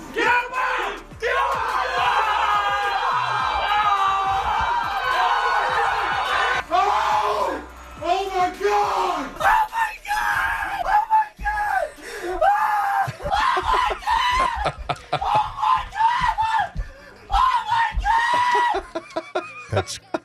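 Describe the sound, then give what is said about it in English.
Excited Minnesota Vikings fans shriek and cheer loudly after Diggs's game-winning touchdown, starting with a long sustained scream of voices, then breaking into repeated yells and whoops that overlap one another. “Shrieking.”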